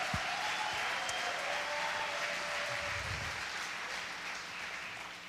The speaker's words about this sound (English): If you believe that, can we clap our hands and just give Jesus praise? Yeah. Oh, come on, you can do better than that.